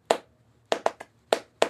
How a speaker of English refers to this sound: To play Clap It Back, all you need to do is clap back the rhythm of the words that I say.